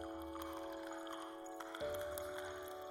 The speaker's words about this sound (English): Into the remnants of the morning's cold tea, Henry poured the reddish-brown liquid.